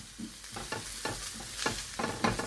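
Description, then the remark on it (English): A steady hiss of frying, broken by about five scraping strokes as aromatics are stirred around a hot frying pan in residual chicken fat left from cooking chicken thighs, each stroke a brief rasp with a rhythmic, unhurried pace. “And I'm just moving everything around the pan.”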